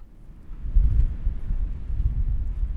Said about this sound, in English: The wind howled and the ocean crashed hard on the shore that night